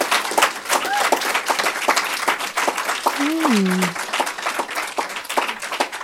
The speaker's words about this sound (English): Folks, don't forget to pick up your signed copies. Let's have a warm round of applause